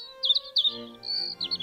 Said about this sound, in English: After a very long while, it started to get very warm inside the cave, and he started to hear birds singing outside.